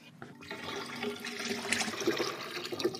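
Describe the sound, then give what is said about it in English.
Water pours steadily from a 10-liter bucket of tap water mixed with 350 grams of salt into a tank to make average ocean water, a continuous splashing gush that swells slightly as it goes, with no one speaking. “Now I have to pour this into the tank.”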